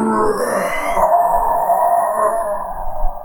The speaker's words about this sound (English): And then you hear, like, just this bassy growl and, like wolf sound.